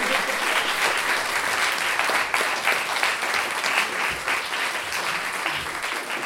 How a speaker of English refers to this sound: Round of applause again.